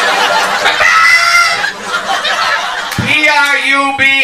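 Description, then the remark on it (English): A person loudly imitates a clucking chicken to mock how the word "probably" is pronounced, making warbling, squawky vocal bursts that end in a drawn-out, wavering cackle. “Like a damn chicken, probably.”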